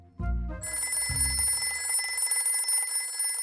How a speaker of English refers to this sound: These days, Tony Williams never knows who's going to be on the other end of the line when his phone rings